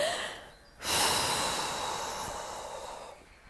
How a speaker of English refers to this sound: So get your breath back. Longer, deeper breathing. Exaggerate it like this.